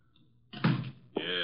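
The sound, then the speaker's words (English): An unlocked door opens with a solid clunk of the latch, followed by a brief rattling scrape as it swings. No one speaks. “Come in, the door's unlocked.”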